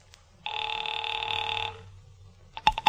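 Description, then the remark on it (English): A telephone rings with a steady, buzzing tone for just over a second, then falls quiet before a quick burst of sharp mechanical clicks as someone toys with the telephone's dial. “Mallard left, and I took the slip of paper he'd given me with Ayers' phone number on it, sat down by Amici's pet aversion, and doodled with the dial.”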